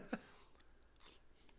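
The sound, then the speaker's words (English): Chewing crunchy duck embryo bones with vinegar: one sharp crunch at the start, followed by softer, quieter mouth sounds and faint crackles as the brittle bones are bitten and chewed. “The crunch of the bone and oh. I like the crunch.”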